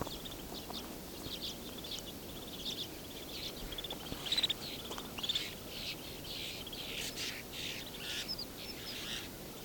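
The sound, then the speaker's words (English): Calls of a couple of redpolls mixed in with a flock of snow buntings: small birds twittering and buzzing continuously, with a few sharper chirps standing out over a steady outdoor background. “Thought I was hearing a raven, but no. Oh, there is red poles.”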